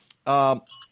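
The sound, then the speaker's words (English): A short, loud voiced sound is followed by a quick, bright jingle of small bells, high-pitched, lasting only a moment. “And I got to get these bells a little closer.”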